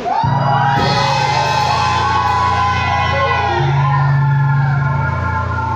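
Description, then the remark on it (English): A large crowd erupts in loud, sustained screaming and shouting, dense and continuous for several seconds, with whoops and cries layered over a low rumbling hum. “Somebody scream.”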